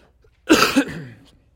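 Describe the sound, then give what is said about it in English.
A single loud cough from a speaker bursts out after a brief silence, rough and breathy, with a second throaty push and a quick fading tail. “Once again, did not hit the mute button as I coughed.”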